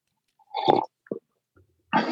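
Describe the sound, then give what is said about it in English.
A loud, wet gulp as someone swallows a big mouthful of chocolate pinon coffee, followed by a short throaty click and another gurgling swallow sound, with no talking. “I heard a big gulp there, man.”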